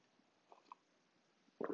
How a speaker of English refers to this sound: Coffee sip.